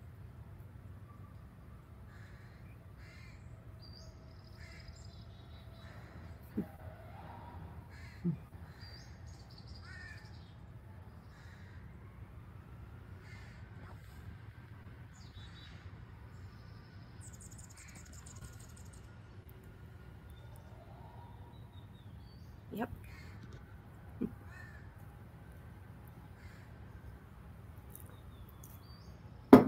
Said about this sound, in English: Yeah, baby crow sounds. Yep. mm-hmm. You don't have any birds that sound like that normally. I assume.